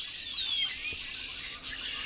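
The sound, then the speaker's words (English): A dense, continuous chorus of about 50 red-winged blackbirds calling all at once from the branches of a bare tree about 20 feet overhead beside a trail in the morning, a steady high chatter with one clear descending whistle standing out early on. No voices. “About 50 red-winged blackbirds in the branches of a bare tree 20 feet above my head.”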